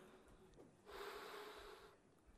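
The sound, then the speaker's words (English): A single forceful rescue breath is blown out during a CPR demonstration, a steady airy rush lasting about a second before fading back to quiet background noise. “Breathe again.”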